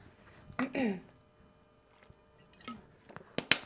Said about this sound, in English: I'm just going to have a sip of water.